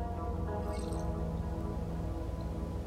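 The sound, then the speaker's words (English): Liquid sounds from making and sipping coffee: a steady wet dripping and gurgling with a brief higher slurping burst near the start, no talking. “Okay, that is like the best cup of coffee I've ever had. And I think I'm going to take another sip.”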